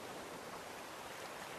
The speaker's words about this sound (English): The tide recedes again toward the middle of the sea. The gentle lull of the waves mesmerizes you. You watch the ebb and flow of the tide for several peaceful moments.